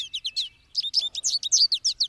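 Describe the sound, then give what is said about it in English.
American goldfinch calls as the bird lands on a sunflower head and pulls out ripe seeds: a rapid series of bright, high twittering chirps, clear, with a brief pause before a denser run of sweet, rising notes. “An equally yellow American goldfinch lands on the huge flower head and begins pulling out ripe seeds.”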